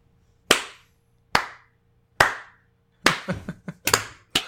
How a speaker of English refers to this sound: Was that a sarcastic clap, or...? That was a real... I ain't fucking getting around to it anytime soon clap.